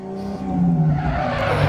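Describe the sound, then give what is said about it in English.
A polished champagne-colored Cadillac's engine revs as it lurches forward out of a parking spot, its tires giving a short, rising squeal over the steady growl of the motor. “The front end of a polished champagne-colored Cadillac lurches out, cutting in front of me from a parking spot.”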